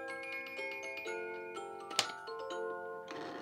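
A clock ticks in a quick, steady rhythm against a sustained ringing, chime-like tone, with one sharper, louder click partway through. No one speaks.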